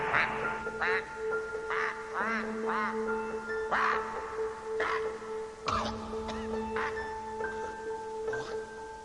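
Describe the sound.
A man imitates a goose with a string of loud, nasal quacks that sound more like a duck, at an irregular pace, set against a steady background hum.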